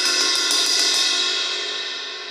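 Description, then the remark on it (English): A loud, bright metallic clang, like a cymbal or gong struck a few times in quick succession, with a shimmering ring that slowly fades. No voices. “If I speak in tongues of men and of angels, but have not love, I am a ringing gong or a clanging cymbal.”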